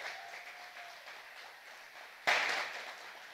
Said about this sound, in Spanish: Yo creo que Dios se merece un aplauso más grande que ese.